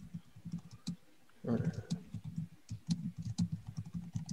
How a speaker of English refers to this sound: Clicking on a keyboard.